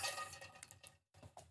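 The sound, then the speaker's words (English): Champagne splashes and fizzes as it is poured into a red plastic cup, breaking off briefly before a second short pour; quiet, with no talking. “That wasn't a good pour because it's not glass.”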